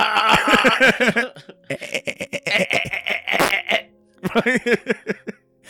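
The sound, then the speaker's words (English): A person imitates a sheep with loud, quavering bleats in two bursts, separated by rough, raspy throaty noises. “I'm the sheep and I come.”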